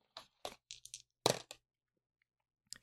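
A quick series of hard clattering knocks as tie-dye dice are rolled on a table to pick questions, coming in several bursts followed by a brief pause and one last rattle, fairly quiet.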